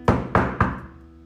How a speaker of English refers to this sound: So he knocks again this time, a little more loudly. Silence. Well, maybe this guy is a little hard of hearing. So he pounds on the door quite hard.